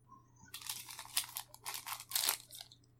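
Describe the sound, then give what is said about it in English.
A sand sheet is lifted with a burst of dry crinkling and rustling, coming in several loud crackly surges over a couple of seconds with no voices. “Lift the sand sheet right there.”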